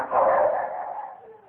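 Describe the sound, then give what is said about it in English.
Hounds bay in a single drawn-out, fairly loud cry that holds steady and then slowly trails off as they follow the Shadow's scent, with no talking over it. “The dogs have got the shadow.”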